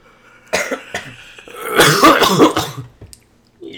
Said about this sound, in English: Can I cough into the mic? They just hear like a loud grunt.